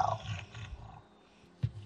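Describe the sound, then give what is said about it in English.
A person voices a deep, gravelly roar, imitating a giant wolf: a rough growl that swells, fades to a low rumble, then ends in a short, sharp snarl. “I'm a giant wolf. So the best I can do is...”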